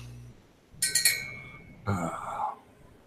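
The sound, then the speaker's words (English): A small bell rings with a quick cluster of bright, metallic strikes that hang in a short high tone, followed a moment later by a second, shorter jingle. No one speaks. “What's that bell?”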